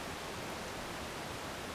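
A steady, dense rush of water roars without a break, like a powerful waterfall. The broad hiss stays constant throughout, with no voices.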